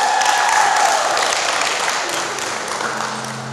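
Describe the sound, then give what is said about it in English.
A large crowd at a church gathering held in a town hall applauds loudly and steadily for the team who put the event together, a dense wash of clapping with a few faint whistles early on before it gradually thins out. “And to our amazing team who put this all together, can we give them a huge round of applause?”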